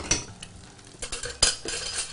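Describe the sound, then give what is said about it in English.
Almost-cooked corn, still holding its shape, being stirred in a pan: irregular scraping and shuffling strokes of a utensil against metal, with one sharper clink partway through and a faint sizzle underneath. No one speaks. “So now that our corn is almost cooked, I think we can go to puree this just another couple seconds.”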